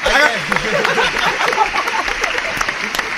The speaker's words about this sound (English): I got the people to clap for me. You did that. I mean, it took a while, but I got it, though. A little delayed reaction.